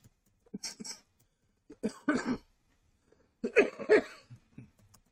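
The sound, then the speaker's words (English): Several harsh coughs from a person who has had a lasting cough for a while, coming in three bursts separated by short pauses, the last burst a pair of loud, hacking coughs followed by a few softer throat sounds. “Sorry about that cough.”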